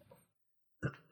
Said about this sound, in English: I'm going to cough through this whole podcast. You can hear it in my voice. It's so deep and like raspy.